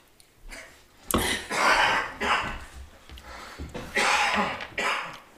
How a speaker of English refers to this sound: Dad, I'm gonna need you to stop coughing over there. Dad's in the back.